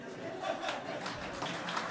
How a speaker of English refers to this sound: Nicely done. And the round of applause.